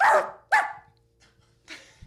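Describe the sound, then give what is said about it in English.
A person imitates a dog with three loud barks: two quick ones back to back, then a short pause before a third. The barks sound convincingly canine, with no talking. “I think I had a dog and I was trying to sort of communicate with the dog, you know, at age 8 or 9, and I discovered that I can make the same sound.”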